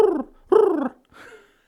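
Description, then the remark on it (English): A person's voice imitates a pigeon's cooing: two full, throaty coos followed by a softer, trailing third, fairly loud with no other talk. “So a pigeon had made its way into my room and was sitting on my chest, and that's how I woke up.”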